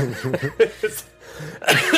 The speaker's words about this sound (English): Coughing, I'm laughing so hard.